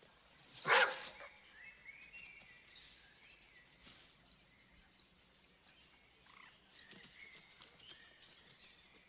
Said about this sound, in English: There's a dog loose in the wood.